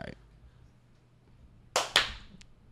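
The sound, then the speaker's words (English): Four people with their eyes closed try to clap together in unison: two sharp, loud hand claps land a fraction of a second apart, out of sync, followed by a fainter third smack. A brief voice sound comes at the start, then near silence. “Why you clap twice?”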